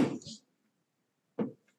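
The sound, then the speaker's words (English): Two heavy, muffled knocks on a front door by someone leaving a package, spaced more than a second apart, each a dull thud with a short ringing tail, with no talking. “I think someone just left a package at our door and knocked like I've never heard before.”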